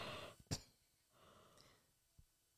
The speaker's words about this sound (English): But like we have so many fun things coming up, but I'm so tired even just thinking about it. About to yawn again, y'all. I'm about to yawn.